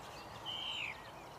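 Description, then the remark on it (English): A lone bird sings at the quiet site of a vanished farm beside an empty industrial estate: one clear, high whistled note lasting about half a second, gently falling in pitch at the end, over a faint steady background hiss with no voices. “Just the birdsong.”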